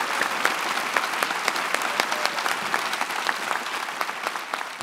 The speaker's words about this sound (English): Thank you. Please keep the round of applause going. Paul McDermott, Marcia Langdon, Jane Caro, David Marr. Thank you so much for being here, everybody.